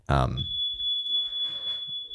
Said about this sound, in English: set off the smoke alarm.